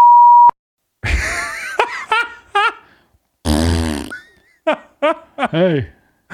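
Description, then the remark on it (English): A loud, steady censor bleep covering a person's name, one flat tone lasting about half a second, then silence before rough, noisy bursts and voices follow. “We're going to redact the name.”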